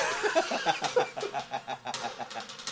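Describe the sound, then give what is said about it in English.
A voice imitates squeaky duck quacks in a rapid, steady string of short, nasal squawks, fairly loud, with no other talking. “Yeah, so everything he says now, he quacks instead of talks.”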